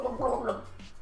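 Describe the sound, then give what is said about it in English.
Wet gargling of water in a throat, a bubbling, voiced burble lasting about a second, followed by a brief splash or swallow-like gurgle. “Is there any water left in there? I swallowed some.”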